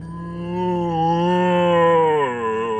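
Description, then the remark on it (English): A human voice imitates a zombie's moan: one long, low, droning groan with a strong harmonic buzz, wavering slightly in pitch before sliding downward near the end. No words are spoken. “Oh, it's letting out a dreadful moan.”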